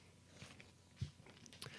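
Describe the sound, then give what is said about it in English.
Quiet chewing of ossobuco, with soft, moist mouth sounds and a few sharper bites scattered unevenly through the moment; no one speaks. “I'm eating ossobuco right now.”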